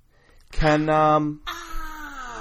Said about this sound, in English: as we speak, our cat son is scratching my feet because I'm wearing interesting socks, so. And you've got feet. Yes. And it wouldn't matter if you had socks on or just feet. Bare feet, he would still bite.